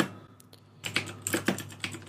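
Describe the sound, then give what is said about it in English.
Someone types a search for "Indie Jet Set Radio" on a computer keyboard: a quick, uneven run of crisp plastic key clicks that starts after a short quiet moment, with no one speaking. “If you just look up Indie Jet Set Radio, I bet it comes up.”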